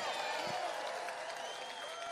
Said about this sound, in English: I'm all for farmers. Put your hand up and clap for the farmers.